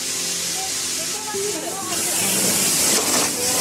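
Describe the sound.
Loud, steady hiss of hydrogen gas rushing out under pressure at a 2014 Voice of the Martyrs Korea balloon launch, continuous throughout and growing slightly stronger toward the end, with faint voices murmuring in the background.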